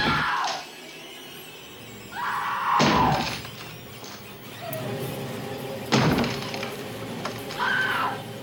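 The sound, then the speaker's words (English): An axe hacks into a wooden door with three heavy, splintering blows spaced a few seconds apart, loud, with creaking and cracking wood between strikes, as a drunken husband tries to break through a locked door in the film The Phantom Carriage. “Adapted from a novel by Swedish author Selma Lagerlöf, The Phantom Carriage has a drunken husband beating his fists on a door, behind which a terrified mother has locked herself and her child. Unable to get in, the husband retrieves an axe.”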